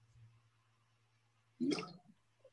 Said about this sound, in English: Excuse me, I was drinking some water.